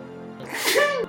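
A single sneeze bursts out after a brief pause: a sharp, breathy, voiced explosion that rises and then cuts off abruptly, over a steady low background hum.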